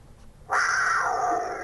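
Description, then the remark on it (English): A mountain lion lets out a sudden, loud snarling yowl, a single harsh, high-pitched cry that holds for about a second and slowly sinks in pitch, with no one talking. “I have an interview with someone who identifies as a mountain lion.”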